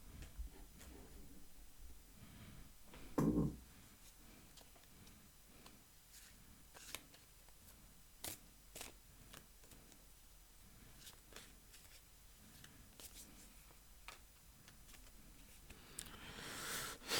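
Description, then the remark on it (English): Playing cards being shuffled: quiet, irregular crisp clicks and riffles continue throughout, with a louder thump early on and a burst of rustling near the end. No one speaks. “Right now I'm on Facebook and shuffling cards.”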